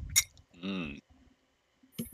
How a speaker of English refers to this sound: I do hope that. you don't hear the clinking of my bowl.